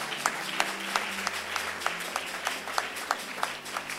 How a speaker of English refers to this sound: If you are happy with the message, clap for yourself.